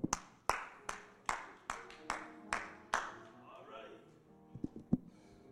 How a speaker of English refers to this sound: Oh, there he is. Everybody else is clapping.